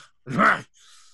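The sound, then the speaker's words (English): A voice imitates a wheezing, sucking in-breath while leaning forward: a short strained, groan-like vocal rasp, then a softer airy hiss trailing off, alone with no talking. “lean forward, and then just this kind of sucking it's kind of like a sucking sound or wheezing, breathing in sound.”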